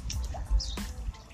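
Gentle water lapping and dripping at the shore of the Hudson River uptown, with a few boats on the water, small splashes and trickles over a low, steady rumble of wind or traffic.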